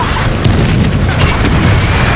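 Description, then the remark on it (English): Distant mortar and artillery explosions roll together into a loud, continuous low rumble, with a few sharper cracking bursts breaking through. No one speaks. “Then, in the distance, mortars and artillery whistle and crash.”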